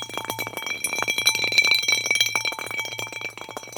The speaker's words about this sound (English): And can you hear that? That's our fax machine.